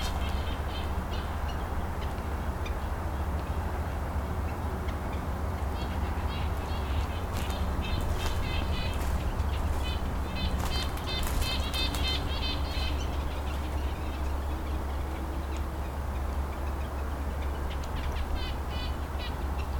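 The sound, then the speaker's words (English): Red-breasted nuthatch calls among spruce trees: short, nasal, high toots repeated in quick bursts, sounding faint over a steady low rumbling background. “good place to find red-breast nuthatches when they're around”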